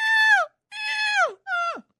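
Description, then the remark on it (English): A person imitates a seagull with three loud, nasal, harmonic cries, each held briefly and then sliding sharply downward in pitch, the last one shortest. “I can't listen to 40 seconds of people doing seagulls.”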